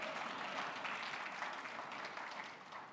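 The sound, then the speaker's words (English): A crowd applauds steadily, a dense crackle of many hands clapping at once with no breaks, holding an even level for a few seconds before easing slightly at the end. “You don't have to clap.”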